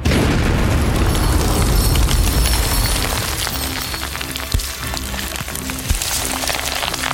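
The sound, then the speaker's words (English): A loud, deep explosion sound effect for a spell being cast in a tabletop role-playing game booms and rumbles for a few seconds, then fades into a crackling, hissing debris-like patter with a couple of sharp pops. No voices are present. “I will cast Explosion of Rot.”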